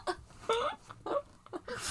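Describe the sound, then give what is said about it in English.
A quick series of small, sharp sneezes, several short bursts each with a breathy, high-pitched hiss, spaced apart by brief pauses. They are fairly soft, and no one talks. “Oh, so three sneezes.”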